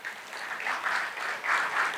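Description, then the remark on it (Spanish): A crowd applauds three young men called up to the front, a steady, dense wash of many hands clapping at once, swelling slightly partway through and holding at a moderate level with no voices standing out. “Dar un aplauso a estos tres jovenazos.”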